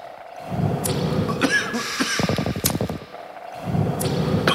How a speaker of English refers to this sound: What is happening? They're going at a bong. Wow. A water pipe used for tobacco only.